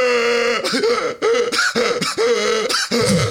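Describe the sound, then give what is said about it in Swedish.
A voice imitates a male seal's roar with a series of about five loud, harsh, throaty bellows in quick succession, each a rough, buzzy burst separated by brief gaps. “Ja, men då tror för att sälar de låter ju så här.”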